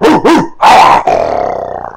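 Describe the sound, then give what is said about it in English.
Two tremendous wolves barring the path, the final guardians of Balsriam, give two quick sharp barks, then a louder snarling bark, followed by a sustained, rumbling growl that trails off. Loud and aggressive, with no talking. “as there are two tremendous wolves that bar your path forward.”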